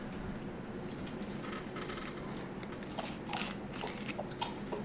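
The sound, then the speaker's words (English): Wet sipping and gulping of A&W root beer poured into a glass, with soft clicky mouth sounds and swallows scattered over a steady fizzy hiss, no talking. “And sips and gulps.”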